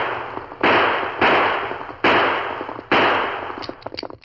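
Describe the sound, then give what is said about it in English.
Four loud gunshots are fired at uneven intervals by a man on a fast-moving horse in the woods, shooting at a masked man. Each is a sharp bang trailing off in a long ringing decay, followed by a scatter of faint crackles; no voices. “He turned and seeing the masked man moving closer, he fired.”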